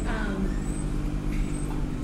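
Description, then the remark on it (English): A large Klein Peter milk delivery truck carrying milk backs up, its heavy diesel engine producing a steady low rumble for a couple of seconds, with faint airy hissing and thin high tones above the drone. “It's got to be an elaborate backup motion with a, you know, huge truck like that carrying all that milk.”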